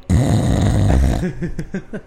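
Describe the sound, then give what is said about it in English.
A voice imitates the loud snoring of an oaf asleep in a chair: one long, rumbling inhaled snore followed by a quick series of short, sputtering snorts. “You hear him snoring, and then you hear a solid thud as he falls out of the chair into the bed.”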